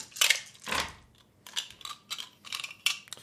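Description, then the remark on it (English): A handful of dice, including a d8, rolled together clatters and rattles across a hard surface in a burst of sharp, uneven clicks, then a few scattered taps as they settle. Fairly loud, no talking. “It's a lot of dice.”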